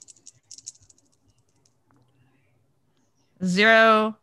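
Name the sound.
dice being rolled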